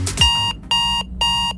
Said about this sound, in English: You know when your alarm goes off?